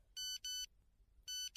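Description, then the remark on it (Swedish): A mobile phone in a pocket chimes a text message alert, an SMS from Jonas, as a train pulls into Gothenburg Central Station: two quick electronic tones back to back, a short pause, then a third tone, bright and clear against a faint low rumble. “Plötsligt vibrerade till i min ficka.”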